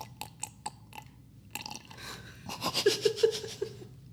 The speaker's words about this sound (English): My slurps.